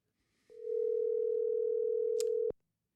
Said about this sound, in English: Let's go ahead and let you hear a little phone ringing on the air. How about that? This reminds me of my old radio days when we used to call people when they didn't know we were going to call them. Okay. That's it. Three ringy dingies.